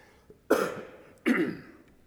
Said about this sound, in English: And again, you'll have to excuse me. I got my cup up here so I can take a drink. And every now and then, I'll have to turn my head and clear my throat.